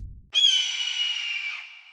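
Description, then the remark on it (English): An owl lets out one loud, shrill, pained-sounding screech that bursts in suddenly, holds raspy and strained for over a second, then tapers off, with no talking; the owl has been struck by many arrows. “screamed in mortal pain and tumbled back to earth in a pile of ruffled feathers and shattered arrows.”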